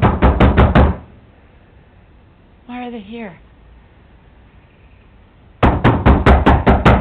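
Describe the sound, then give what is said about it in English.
Sheriff's deputies knock loudly and rapidly on a front door in a quick burst of several raps, then a pause with a brief spoken question, then another forceful burst of knocks. “Sheriff's Department, you need to come to the door.”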